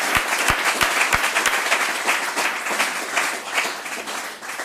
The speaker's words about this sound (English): But you guys, let's make a huge round of applause for this guy sharing his story.